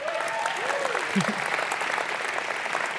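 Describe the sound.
A crowd applauds steadily throughout, a dense, even patter of many hands clapping, with a few faint voices and a brief whoop rising through it early on.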